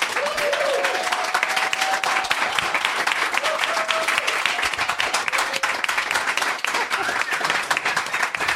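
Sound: audience applauding and cheering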